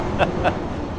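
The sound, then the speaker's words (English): A low, steady roar fills the moment, like an airplane flying over in a flight pattern, with two brief tonal chirps poking through the rumble. “as I dance and wait for the flyby to go by.”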